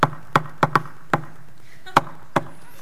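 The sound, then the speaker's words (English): A playful rhythmic knock on a wooden door, the familiar friendly knock used when going to a friend's house: seven sharp raps in a bouncy pattern with a pause before the final two, heard clearly with no voices. “It's the knock that we all use when we go to a friend's house. And it sounds a little bit like this.”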